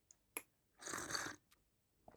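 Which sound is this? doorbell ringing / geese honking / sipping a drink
sipping a drink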